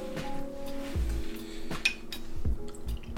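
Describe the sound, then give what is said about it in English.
Tito's vodka being poured for a Cape Cod (vodka cranberry) cocktail, with a soft liquid trickle beneath several sharp glass clinks and knocks, each leaving a brief ringing tone. No one speaks. “We'll be pouring some Tito's.”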